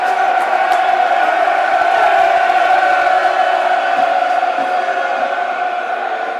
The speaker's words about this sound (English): Applause all round for the work of Shane Ferguson and Ben Thompson there.